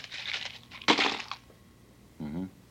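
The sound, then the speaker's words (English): A pair of cheap dice, one of them loaded, is rolled out across a hard tabletop in a burst of rapid clicks, with one sharp crack partway through as one die splits in two, then a short hummed vocal sound after the clatter settles. “Now, you roll them out on the table like this.”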